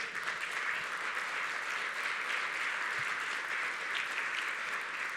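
An audience applauds the Lord steadily, a dense wash of many hands clapping at an even, sustained level throughout, with no break and no voices standing out.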